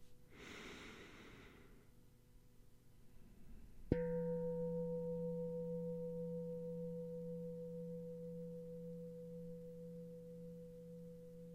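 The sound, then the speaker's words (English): A soft breath is followed by a single struck meditation bell during a guided breathing meditation, its deep, layered tone ringing out steadily and only slowly fading over several seconds. “And with each bell, as you exhale and hear it drift off, invite yourself to settle in a little deeper.”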